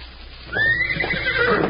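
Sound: horse neighing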